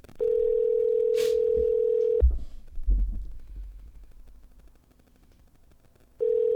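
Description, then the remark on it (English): An outgoing call rings with no answer: a steady electronic ringback tone lasts about two seconds, falls silent apart from faint handling thumps, then starts ringing again. “Get Tremaine on the phone, man. If he pick up, if he don't pick up, it's because he's still hurt.”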